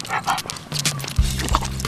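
A tricolor English bulldog huffs and snorts with loud, rhythmic puffing breaths while on a walk in a park, its heavy panting growing raspier partway through, with faint outdoor noise behind.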